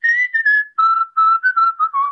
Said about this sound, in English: Sometimes we're walking down the street and we're whistling this tune, you know.